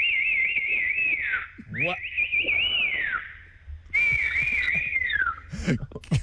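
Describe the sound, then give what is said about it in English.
A loud, piercing fingers-in-mouth whistle sounds in three long, wavering blasts with short gaps between them, and brief bits of voice can be heard in the pauses. “Because …'s a fingers in the mouth to whistle.”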